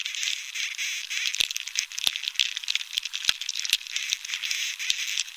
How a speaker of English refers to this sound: But without water, there's no sap, and soon the beetles are drilling and breeding and making more of a racket. Here's Dunn's recording of a moderately infested tree.